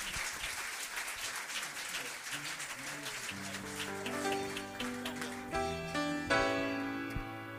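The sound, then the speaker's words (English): A church audience claps their hands in dense, steady applause during an evening service, giving a hand clap for God. Midway, sustained keyboard chords join in and build beneath the clapping, which continues to the end. “We ought to give him a hand clap for what he does in our life.”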